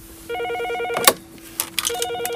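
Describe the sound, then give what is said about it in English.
A telephone rings at the front desk of the Winnipeg Art Gallery, where people buy admission. It rings with a steady electronic trill in bursts, broken midway by a few sharp clattering knocks before the ringing resumes. No one speaks. “Thank you for calling the Winnipeg Art Gallery. How may I help you?”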